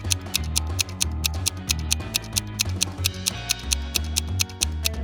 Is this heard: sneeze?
no